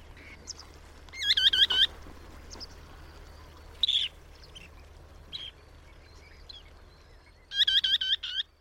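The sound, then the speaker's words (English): Red knot calls come in three short bouts of rapid, repeated high-pitched notes, with a lone chirp between them, over a steady low background hum. “The red knot loves to hang out with other wader shorebirds.”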